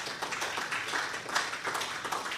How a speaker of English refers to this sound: Now, would you give the Lord a big hand clap of praise, church? Come on.